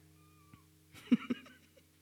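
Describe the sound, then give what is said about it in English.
A male pet cat named Quiet Riot lets out a short meow that breaks into two quick pulses, heard against a faint steady background hum with no talking. “Hey, kitty, thank you for that. You're a good boy, Quiet Riot.”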